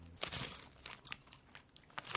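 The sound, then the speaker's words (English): Crunchy chewing of three Shriekers sour candies at once: irregular, sharp crackling bites and wet mouth sounds, bright and crisp, with no talking. “Apologies to anyone who doesn't like mouth noises.”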